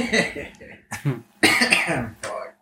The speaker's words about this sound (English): It's funny because like it's hard to fucking cough in public now because everybody just looks at you.